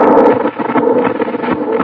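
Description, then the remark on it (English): A loud, steady rush of howling wind that swells and dips slightly, with a hollow moaning tone running through it and no voices. “Sure is windy.”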